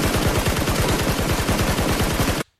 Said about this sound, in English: I got to be prepared for it because it's like hella gunshots just in your ear. If you're not expecting it, let's just be real reactions.